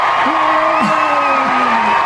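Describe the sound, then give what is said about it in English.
A studio audience cheering sound effect: loud, steady cheering, a dense wash of crowd noise with a few rising whoops and shouts standing out over the roar. “That was more like that's like Carson Daly audience. Yes, rehearsed audience.”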